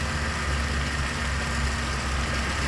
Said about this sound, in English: As we move closer, you can hear the very audible whine of the generator pump used to get the water up into position to fall.